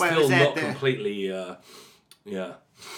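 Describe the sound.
A person in Tokyo, not yet fully well, sniffles through a stuffy nose during sniffle season, short breathy intakes of air mixed in with voiced, wordless vocal sounds, ending with a faint airy sniff.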